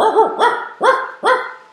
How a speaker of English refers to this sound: After a little while, Gobi started barking.